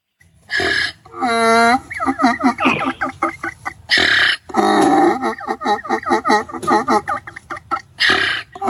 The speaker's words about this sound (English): He's not a singing donkey. He's a laughing donkey. That sounds like he was laughing at us.